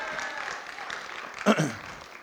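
A crowd applauds steadily, a dense hissing patter of many hands clapping at an even level, with one brief louder burst partway through before the clapping tapers slightly.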